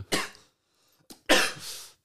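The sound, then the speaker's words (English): A person coughs: a harsh cough, a short pause, then a smaller catch and a longer, raspy cough that trails off. No talking. “I need to cough for 12 Yeah, cough seconds.”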